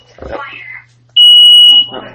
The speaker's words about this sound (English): Well, that was fun. Our oven just set off the smoke alarm. Yeah. Just for the heat. I think you were standing too close to it.